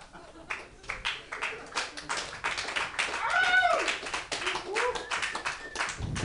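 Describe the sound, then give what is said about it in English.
A comedy club audience breaks into applause, a dense, steady patter of clapping lasting about six seconds, with a few rising whoops and cheering voices cutting through midway. “Fucking applause break.”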